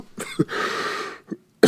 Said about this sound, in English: He stands back and coughs.